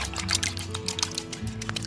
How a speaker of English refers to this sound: And the essential ingredient, a couple of tablespoons of vanilla extract. I love vanilla extract, can you tell? All right, now I'll just whisk this together.